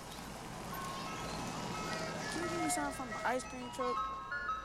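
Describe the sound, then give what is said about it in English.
An ice cream truck jingle plays its tinny, repetitive melody over steady street rumble, moderately loud, the bright chime notes stepping up and down in a looping tune. “Now, for as long as I can remember, the ice cream truck been playing this same song.”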